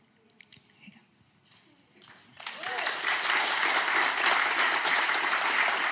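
audience clapping and cheering

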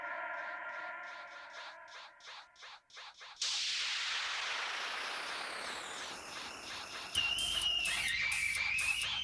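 whistling tone

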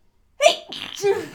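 a sneeze

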